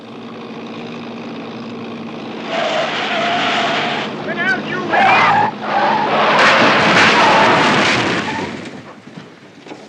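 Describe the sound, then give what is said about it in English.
A car's tires screech loudly as it swerves and brakes hard to miss a pedestrian during a road test, with several rising, wavering squeals over engine rumble for several seconds while a man shouts briefly. “it was real quick-witted the way you missed hitting that pedestrian without undue wear and tear on the brakes”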